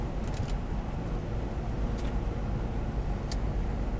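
Steady low road rumble from a car moving on a highway, with a few brief, sharp ticks and scrapes as chunks of frozen ice break loose and fly off the vehicle.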